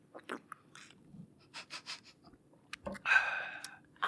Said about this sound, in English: Maybe if I, like, take a big old gulp. Do it. One big gulp. I'll take a big gulp of my water. Okay. Hold on, wait for me. All right, do it in the microphone.